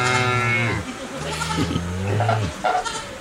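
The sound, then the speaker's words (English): A generated farm soundscape in wide stereo: cattle moo twice in succession, each a long, low, droning call lasting about a second, over a steady bed of farmyard background noise. “Which would you like? Farm.”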